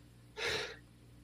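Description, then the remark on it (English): A single short, breathy sneeze bursts out, a sharp puff of air lasting under half a second before quiet returns. “oh, excuse me. Bless you.”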